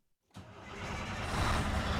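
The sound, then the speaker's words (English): After a brief silence, the engine of a white Volvo truck turns over and roars to life, settling into a loud, steady rumble that grows slightly stronger, as 17-year-old students in the cab do a pre-trip inspection outside the shop room at Williamsport High School in Western Maryland. “Just outside the shop room at Williamsport High School, some 17-year-olds have piled into the cab of a white Volvo truck.”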